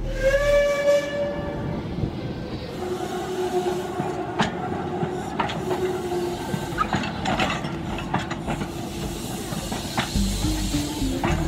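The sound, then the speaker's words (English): A restored steam locomotive on a heritage railway at Bodmin in Cornwall gives a short whistle blast, then hisses steadily with clanking mechanical knocks and chuffs, loud, with no voices. “After many hours of labour in October 2008, she was able to move on her own steam again.”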